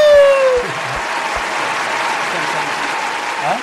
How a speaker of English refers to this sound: Hey! Hey, round of applause!